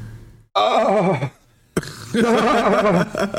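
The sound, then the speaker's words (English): A person imitates a horse whinny, two loud, quavering bursts separated by a brief pause, the second longer and more ragged. “You turned to a horse? What the hell?”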